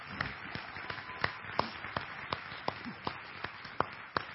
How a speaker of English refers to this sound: That was so encouraging. Yeah, clap again.